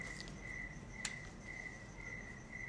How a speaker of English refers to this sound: Hear the crickets? I really hope you can, because that is a beautiful sound that I don't get to hear at all over there in the States.